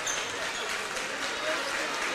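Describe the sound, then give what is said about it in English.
Steady applause from Coldwater fans at a basketball game in a gym, a dense wash of clapping that holds at an even, moderate loudness for a couple of seconds, with faint crowd murmur mixed in. “Nice round of applause from the Coldwater fans that are here in attendance.”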